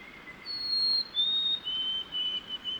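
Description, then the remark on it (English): A white-throated sparrow in shrubs next to a beaver pond sings clear, sweet whistled notes on a cold, rainy morning: a long pure tone, then a slightly lower one, followed by a string of shorter repeated whistles over soft background hiss. “Those are the sweet whistles of a white-throated sparrow.”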